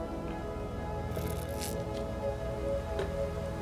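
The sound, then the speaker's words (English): A quick, airy slurp of someone sipping coffee, with a softer second sip trailing after, over a steady low background hum. No one speaks. “I just, you know, you just wind me up with some coffee. Hang on, get another sip.”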